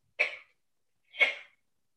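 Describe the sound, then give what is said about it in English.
Two sneezes about a second apart, each a sharp, breathy burst that fades quickly, with silence between them and no talking. “I'm about to sneeze. Hold up.”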